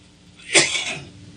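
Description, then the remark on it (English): A single harsh, explosive cough bursts out and trails off over about half a second, with no talking around it. “I'm trying not to cough and easy think of what I want to say.”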